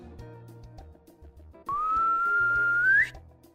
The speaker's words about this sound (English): And you hear a faint whistling.